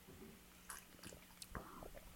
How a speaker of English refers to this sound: I'm going to sip mine because I'm going to spill it soon. Yeah, here we go. Sip.